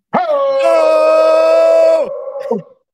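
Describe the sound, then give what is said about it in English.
People imitate a dog's howl with one long, loud, sustained wail held for about two seconds, then a brief tapering cry at the end, with no other sounds. “That's some good hauling.”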